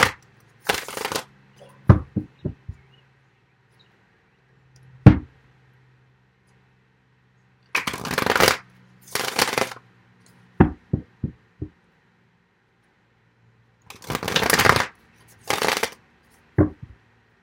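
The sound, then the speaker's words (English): A deck of cards is shuffled for a card reading in several brisk riffling bursts, each about a second long, separated by sharp taps and clicks as the cards are squared and knocked together. No one speaks. “Let's get some cards on the physical intimacy.”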